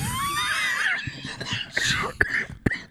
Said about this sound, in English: Jeez, you just took a big old hit off that thing. Holy cow. Jeez, dude, you just literally hacked up a lung.